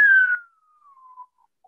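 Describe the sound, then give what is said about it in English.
A single whistled note, the whistle that descends as performers exit the stage, slides steadily downward in pitch, starting strong and bright, then thinning out as it falls, followed by a brief faint chirp at the end. “It's like the whistle that goes, that descends as they exit.”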